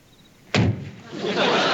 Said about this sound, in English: Barney, Otis, and Gomer arrive in the driveway of the Taylor home in the squad car. They're trying to be quiet as Barney opens the door. Gomer in the back opens his door. Otis slides out the front. Barney quietly closes the front door of the car.